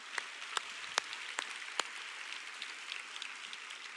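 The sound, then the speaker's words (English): An audience at Heart of God Church applauds in a steady, dense patter of many hands, a few sharper individual claps popping out early on, heard fairly soft with no voices. “So give yourself here a big, big round of applause.”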